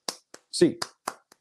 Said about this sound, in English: In the meantime, get your hands up, Bruins fans. 8 clap time, baby. And 1, 2, 3, 4, 5, 6, 7, 8.